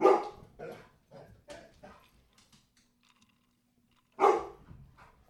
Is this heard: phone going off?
no